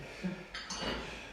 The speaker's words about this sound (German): in der Regel auch wirklich nur so aus dem Hintergrund durchs Geschklapper mit dem Geschirr vielleicht kennenlernen.